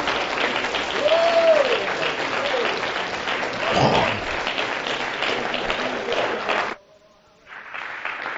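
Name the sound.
audience clapping hands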